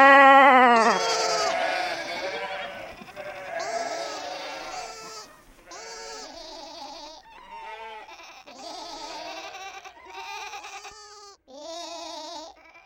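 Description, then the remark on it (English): Sheep on a theater stage bleat over and over in a wavering, overlapping chorus, loud at first, then continuing as a steady series of calls with no talking. “And as the sheep suddenly go quiet, a silence reigns, and the theater darkens.”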